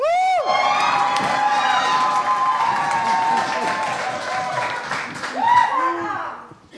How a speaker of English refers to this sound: Applaud the poet, not the points. And keep that applause going for our next poet up the stage.